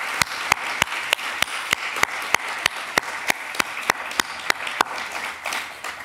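An audience applauds in a steady wash of clapping, with a few sharp, evenly spaced claps standing out above the crowd before they stop near the end.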